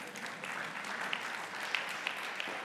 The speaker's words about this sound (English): Let's give this righteous man a round of applause.